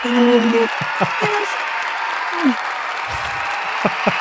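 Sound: crowd applause sound effect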